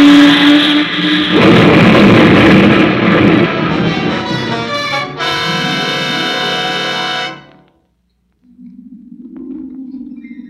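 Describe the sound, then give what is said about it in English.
A small plane's engine roars and sputters, its pitch wavering and straining, then cuts off abruptly as the plane crashes, into a brief silence, followed by a low, steady hum. “Your plane crashed.”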